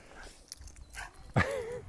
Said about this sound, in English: Oh, dogs.